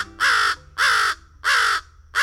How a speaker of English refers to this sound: The harsh caws of American crows are one of the most familiar bird calls in North America. But a few crows in this flock sound like they've got stuffy noses. The birds aren't under the weather, of course. They're fish crows